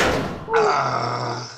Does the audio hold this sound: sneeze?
no